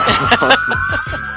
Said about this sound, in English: Give us that exclusive. Air horns going off right now.